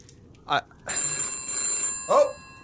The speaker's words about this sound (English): Phone call. Yeah, that's what I know what a telephone sounds like.